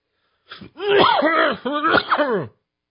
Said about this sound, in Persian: تو صورت منم سرفه نکن. نه دیگه سرفه میاد.